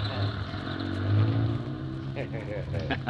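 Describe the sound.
A heavy moving van engine revs loudly and steadily as the van, just turned around, pulls away, its deep rumble rising in pitch, with muffled voices faintly audible near the end.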